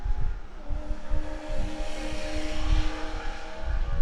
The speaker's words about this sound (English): Are you racing cars now? That was a Lambo. Yeah. Wow. That was pretty tight. That's pretty crazy.